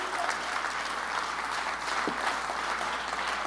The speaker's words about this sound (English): Clap your hands and praise him today.